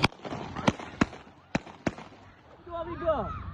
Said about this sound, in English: Holiday crowds became targets when a car rammed pedestrians on the busy promenade. This is the moment when police surrounded the attacker and then shot him dead.